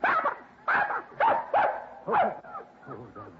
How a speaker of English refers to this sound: Well, I'll be jinxed with it. Puppies, darling. Yes, sir. Six of them. Yes, well, that little rascal. Puppies. So that's why she disappeared, eh? To have her family.